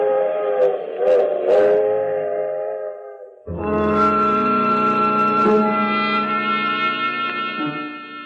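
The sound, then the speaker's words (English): A train whistle sounds loudly in long, sustained chords, first one blast, then a fuller, deeper tone, over the low rumble of a train pulling away from Sooner Falls and continuing on to New York, with no voices. “In Sooner Falls, I watch the train continue on to New York.”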